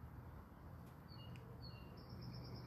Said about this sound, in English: It rained last night and the birds are out singing. I needed this. Just peace and calm.